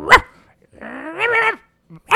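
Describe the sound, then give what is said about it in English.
A person imitates a small shih tzu yapping at everything that moves: a sharp yap, then a drawn-out whiny yowl, then another quick yap at the end, fairly loud with no talking. “Yeah, so your dog gets to just kind of walk around and bark at everything that moves.”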